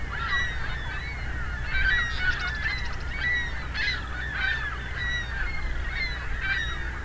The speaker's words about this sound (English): A lot of ringbill calls. Ringbill gull calls. They seem to have collectively decided to change direction. And changing direction again. Seem to be all ring-billed gulls.